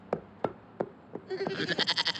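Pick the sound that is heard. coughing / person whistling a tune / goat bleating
goat bleating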